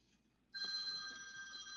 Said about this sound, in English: Oops, somebody's ringing. Yeah, don't worry about it. Sorry, but that's my wife.